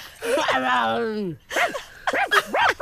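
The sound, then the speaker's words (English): A dog lets out a long, wavering, whining howl, then after a brief pause gives a quick series of short, sharp barks and yips. “I'm a dog.”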